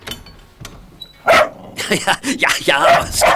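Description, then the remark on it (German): A dog named Oskar barks excitedly while having its fur brushed, a quick run of loud, short barks and yips packed close together over a few seconds. “Gabi bürstete ihrem Hund Oskar gerade das Fell, als ihr Vater vom Dienst nach Hause kam.”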